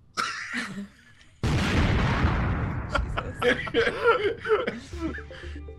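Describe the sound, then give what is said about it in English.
A sudden, loud explosion bursts in and rumbles off over a couple of seconds. Voices chuckle and chatter over the fading blast, with a few words spoken just before it. “Fireball of explosion.”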